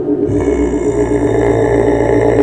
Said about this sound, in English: The voice of the Grumark is low, and the idol on the wall growls.